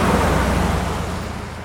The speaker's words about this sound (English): The TIE Fighter was made with two main elements again. The first being the sound of a car passing by a microphone on wet pavement.